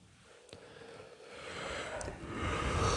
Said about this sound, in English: Sorry. You made me yawn. My bad.